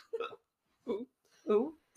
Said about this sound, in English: Sorry, I got hiccups. I've had them all day.